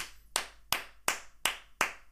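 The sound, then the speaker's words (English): Slow, steady clapping: about six sharp, crisp hand claps spaced evenly apart, each with a brief ringing tail, and no voices. “Standing ovation.”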